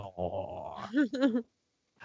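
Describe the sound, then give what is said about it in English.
Dogs outside in Jersey City at night growl in a low, rumbling stretch, then let out two quick, strained barks before going quiet. “Oh, damn dogs.”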